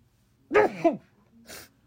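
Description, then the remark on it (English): A single human sneeze: a voiced, rising intake followed a beat later by a short, breathy, hissing burst, with no talking. “Uh-oh, I got a sneeze coming on.”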